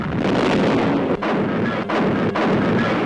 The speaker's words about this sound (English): Lexington became the principal target of Japanese attack. In spite of skillful handling, the flagship of Admiral Fitch was hit by at least two bombs and torpedoes.